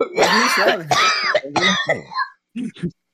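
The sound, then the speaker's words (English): Several loud, raspy coughing bursts, hoarse and throaty, breaking off after a couple of seconds into two shorter, quieter hacks. “I coughed and I got dizzy.”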